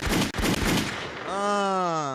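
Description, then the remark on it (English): Loud, rapid gunshot sound effects fire in a quick burst for about a second, then give way to a sustained, ringing tonal sound that holds to the end. “Make sure y'all get gunshots.”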